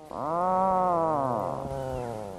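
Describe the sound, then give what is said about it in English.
A puffin gives a single drawn-out, low groaning call, rich and buzzy, holding steady before sagging in pitch and trailing off into a rougher tail. It sounds loud and alone, with no voices. “That unmistakable call, used by pairs to signal to each other at their breeding sites and to communicate with their pufflings, yes, that really is the name given to baby puffins, is perhaps not the sound that one might expect a puffin to make.”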